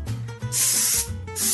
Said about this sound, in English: Not a jelly roll pan, but a true half sheet pan with that little 1-inch lip around the edge. And you're going to want to either butter it or spray it with some cooking spray, which I'm going to do. I find it a little bit easier.